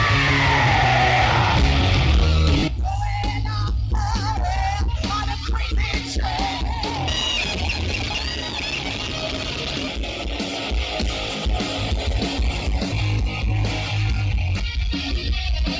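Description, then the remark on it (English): A big crowd screams and cheers nonstop for a singer at a tribute night to him, a dense, loud wall of overlapping yells and whoops that stays intense for the whole stretch with no clear single voice. “Let's hear for …! Scream for …!”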